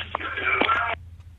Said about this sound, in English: And he's gone. He's gone. He's put the phone down, but he's not been cut off.